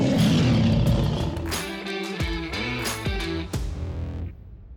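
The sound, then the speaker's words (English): A loud, distorted roaring sound effect with growling, engine-like swells and pitch swoops, lasting about four seconds before cutting off abruptly, with no voices. “Let's hear your roar.”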